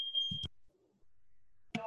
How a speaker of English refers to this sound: So I wonder if they can hear my alarm. Sound the alarm.